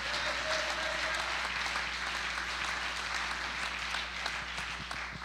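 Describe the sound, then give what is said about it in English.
A crowd claps hands to thank God for his word, many hands clapping in a dense, continuous patter that holds at an even loudness for several seconds, with a faint hum underneath. “Would you clap your hands and thank God for his word?”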